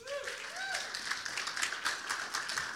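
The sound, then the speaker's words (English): A crowd applauds a person who had been drumming, with steady, dense clapping that keeps going for the whole stretch, while a voice rises in a brief cheer or call near the start. “Give him a clap.”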